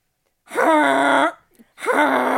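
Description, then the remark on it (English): A person imitates a goose with two loud, nasal honks, each a sustained buzzy call of under a second, separated by a short gap with a faint breath. “That's the noise that a goose makes, right?”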